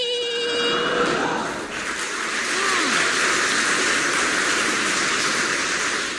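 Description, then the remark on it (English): A train rumbles steadily along the rails, a dense continuous roar that opens with a brief high whistling squeal fading away in the first second, with no voices. “A lot of people on the train.”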